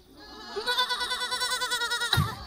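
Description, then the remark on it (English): A small pig screams a single drawn-out, quavering "maa" cry like a sheep's bleat, loud, trembling rhythmically for over a second before cutting off with a brief low thud. “You'll see, but he starts to scream, Ma, and they all can't.”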